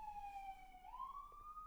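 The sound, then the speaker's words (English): An ambulance siren wails steadily, its tone dipping and then rising again as the ambulances sweep past, with a low traffic rumble underneath and no one speaking. “As I'm talking, the fucking ambulances interrupted me, so I'm allowed them to go past, and then I'll continue.”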